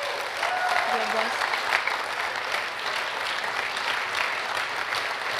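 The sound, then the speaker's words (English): A steady round of clapping from a group for an ultimate class fills the whole stretch, dense and even in loudness, with a few faint voices and a brief whistle-like tone mixed in early on. “And if we could give a round of applause for, that's for my ultimate class.”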